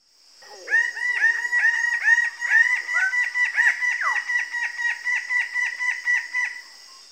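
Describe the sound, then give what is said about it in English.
Loud, harsh honking calls from a Red Bird-of-paradise, repeated in a rapid rhythmic series of about a dozen nasal notes, unmelodious and insistent, with a steady high hiss behind. “So yeah, they have these kind of, I don't know, honking vocalizations, not real melodious, but incredibly loud.”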